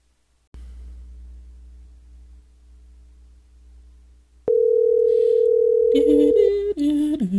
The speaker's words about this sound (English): Now, let me make this third phone call. Here we go.